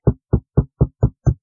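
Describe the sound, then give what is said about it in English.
Six steady knocks on a door, evenly spaced about a quarter second apart, each a dull, low, solid thud of equal loudness with no voices. “Someone's what was knocking. That knocking?”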